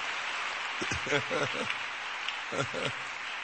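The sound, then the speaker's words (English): Steady audience clapping makes a dense, continuous patter, with a voice briefly speaking over it in a couple of short bursts. “Your clapping is very jealous and very envious.”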